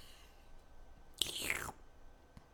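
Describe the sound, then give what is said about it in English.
A single wet sucking slurp made while drinking lasts about half a second against near silence, followed later by a faint mouth click; no one speaks. “You don't like the sounds of sucking and swallowing”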